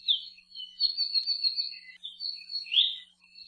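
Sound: bird calls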